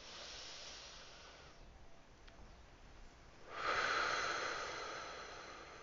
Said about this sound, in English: So before I get into this episode, I just want to do a minute of breathing. And just deep breathing in through the nose and exhaling through the mouth.